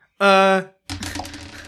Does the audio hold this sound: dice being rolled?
yes